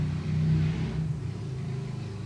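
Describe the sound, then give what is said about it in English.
A loud motorbike engine revs steadily, its low droning pitch rising and shifting as it works through the gears into fourth gear, with no voices. “That's a very loud motorbike.”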